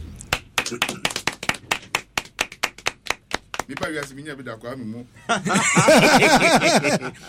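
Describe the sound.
Steady, rhythmic clapping of hands for about four seconds, sharp, applauding a speaker in a discussion, then the claps give way to loud overlapping voices and laughter-like vocal sounds.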